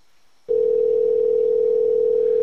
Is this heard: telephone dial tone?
yes